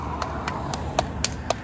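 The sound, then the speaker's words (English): Six sharp hand claps in a steady, even rhythm, roughly four per second, fairly faint over a constant low rumble, applauding people as they drive off in their vehicle. No one speaks. “And we applauded them as they drove off.”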